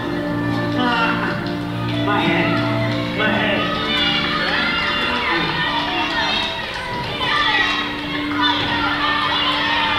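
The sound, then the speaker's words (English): A crowd of children shouts and cheers encouragingly, cheering someone on in a race, many excited voices overlapping in a steady, lively din that rises and dips in bursts throughout. “They would cheer him on, and they would help him up the times when he would fall.”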